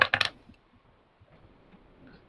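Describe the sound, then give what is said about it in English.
Dice are rolled for a Spot Hidden check in a tabletop game, clattering briefly across a hard surface, a quick burst of several sharp, bright clicks in the first moment, followed by faint low background noise with no talking. “I make that roll.”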